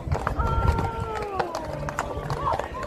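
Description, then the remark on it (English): Horses' hooves clip-clop on a hard street in an uneven, overlapping clatter as people try to get the horses to cross an LGBTQ rainbow painted in the street, with voices murmuring underneath and a steady background hum. “these horses going down the road”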